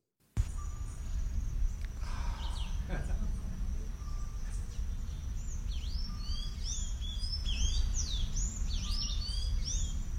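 A bird in Sacarima, Brazil calls in quick, repeated chirps that cluster toward the end, set against a steady high insect drone and a constant low outdoor rumble.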